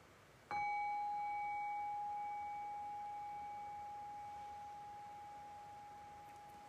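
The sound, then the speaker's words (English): A single meditation bell is struck once to bring a meditation to a close, ringing out with a clear, steady tone that slowly fades over several seconds with no other sounds. “And so in the next few breaths, I'll just ring the bell one time as a way of bringing this meditation to a close.”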